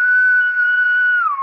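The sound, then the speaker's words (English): A person whistles one long, steady, loud note that slides downward near the end like a short melodic phrase, imitating a whistling motif from a film score. No one speaks. “Like, and I guess the whistling noise that you hear a lot was supposed to...”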